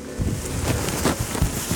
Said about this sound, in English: That's getting windy again.